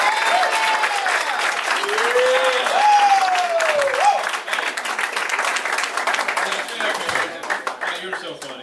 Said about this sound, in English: All right, yeah, that's it. Want to give it a clap?